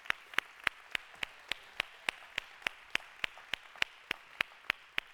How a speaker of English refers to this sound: I do love your pastor and his wife. Will you help me just show that love by giving them an incredible big round of applause?